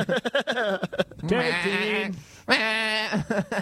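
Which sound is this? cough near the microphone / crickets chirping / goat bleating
goat bleating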